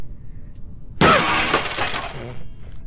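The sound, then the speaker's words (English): A table breaks with a sudden loud, splintering crash after a second of low rumble, followed by a bright clatter of breaking pieces that slowly tapers off. No one speaks. “So if I break this table, you're going to immediately fall asleep and dream a dream?”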